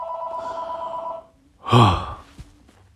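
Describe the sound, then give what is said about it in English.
A phone's electronic ringtone for an incoming call from Toronto, left unanswered, plays a steady, bright tone for about a second and stops, followed by a loud breathy sigh. “I don't feel like picking that phone call up right now, but I'm going to let it ring.”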